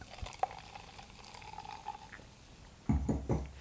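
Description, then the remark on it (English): Blonde beer is poured from a bottle into a glass, liquid gurgling and splashing in a steady trickle with a few bright clinks, followed by a louder burst of glugging near the end. “So let's pour that.”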